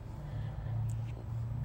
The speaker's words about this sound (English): I'm recording in my car.